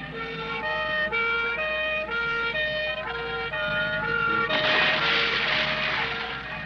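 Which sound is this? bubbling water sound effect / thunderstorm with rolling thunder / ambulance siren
ambulance siren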